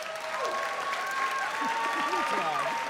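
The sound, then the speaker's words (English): An audience at a debate cheers and applauds the pro side steadily throughout, a dense wash of clapping with whoops and shouting voices rising above it, loud and sustained with no pauses. “Let's hear our cheers for the pro side.”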